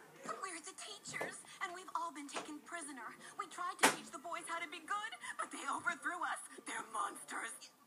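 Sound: door being closed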